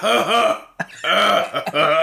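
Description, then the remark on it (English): A voice mimics a distinct cough with throaty, guttural vocal bursts: drawn-out rasping grunts broken by short, sharp catches. It is loud, with no words. “Unless maybe it was a very distinct cough.”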